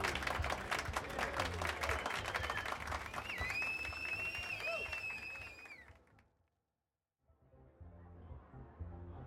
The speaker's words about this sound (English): Can everyone give him a round of applause? Yay!